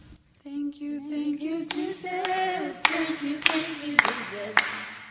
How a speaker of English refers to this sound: That's what we'll sing the English version, and this is how we were singing. We'll clap our hands.